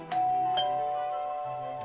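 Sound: doorbell ringing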